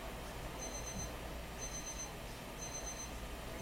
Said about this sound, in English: Timer's going off. What time do we start this? I don't know. Like a half an hour ago, right? About, yeah, it sounds about right. Heard the timer go off like three times now? Four? I think four.